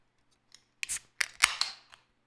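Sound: beer cans cracked open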